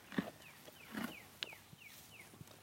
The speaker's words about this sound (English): Best sound in the world. Horses eating hay.